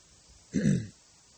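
A single short, gruff throat clearing lasting under half a second against near silence, with no talking around it.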